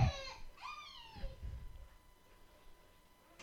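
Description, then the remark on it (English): A dog whines and yelps in high, wavering cries, with two loud drawn-out whines at the start that trail off into quieter whimpering. “All I hear is dog.”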